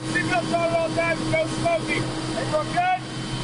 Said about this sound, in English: It's how Americans and their allies working at the U.S. Embassy and military headquarters travel back and forth from the airport. It's just a 5-minute flight. The chopper we boarded was making its 10th trip of the day.